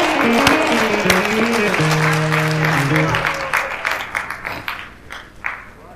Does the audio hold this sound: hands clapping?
yes